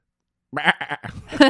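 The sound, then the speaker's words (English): A short, wavering goat bleat breaks in after a moment of silence, loud, its quavering cry pulsing in a few quick bursts before ending on a sharper, nasal note. “I'm gonna get me some goat sound effects.”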